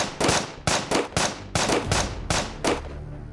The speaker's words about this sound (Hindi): और नेचुरल सी बात है वो गोली चलाने में तो माहिर था ही था, तो गोलियां चलने लगती हैं उसकी तरफ से काफी ज्यादा।